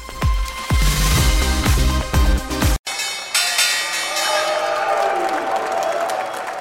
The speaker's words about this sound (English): And you're taking a live look at the opening bell on Wall Street, and you aren't seeing wrong.